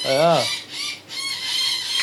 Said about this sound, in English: What's the go with these birds, man? They're full on blueing.